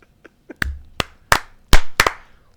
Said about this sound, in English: Slow clap on that one.